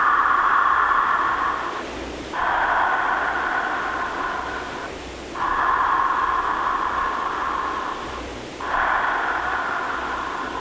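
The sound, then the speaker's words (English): Steady, airy deep breathing demonstrated in long rushing waves, each inhale and exhale flowing into the next with only a brief dip between, loud and hissing with no talk over it. “I always tell people that what it sounds like, to give them an idea, it's like a wave.”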